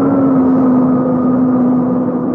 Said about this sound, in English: Plane's coming to a halt.